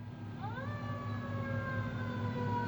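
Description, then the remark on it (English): A fire truck siren swoops upward and then holds a long, steady wail, drifting slightly lower as it goes, over a constant low engine rumble. No one speaks. “We love the fire trucks.”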